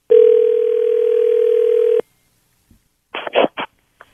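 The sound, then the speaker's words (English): A steady telephone dial tone hums for about two seconds, then stops; after a soft click, a quick cluster of three or four keypad beeps follows as a number is dialed to call the speaker's mother. No one speaks. “Okay, I'm going to call my mom up right now. Just get her on the phone real quick to find out who she thought Turk would have been.”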